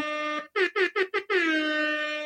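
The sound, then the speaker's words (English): A loud hip hop air horn blares: one sustained blast, then four quick rhythmic stabs, ending in a long held blast that fades slightly. No talking over it. “So now I forgot to give them hip hop air horns, everybody, for supporting the show.”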